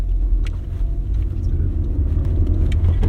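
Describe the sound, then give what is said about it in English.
Steady low road rumble inside a moving car on a 23 °C day, a continuous deep drone filling the cabin with faint scattered ticks and clicks above it, no one speaking. “It's 23 degrees Celsius outside, but it's much warmer in the car.”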